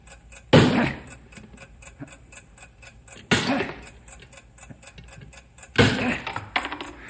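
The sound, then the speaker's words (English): A bomb's timing device ticks steadily and fast throughout, broken three times by loud, heavy metallic impacts as a wedge is hammered in to stop the ticking, briefly drowning it out. “I can still hear the ticking”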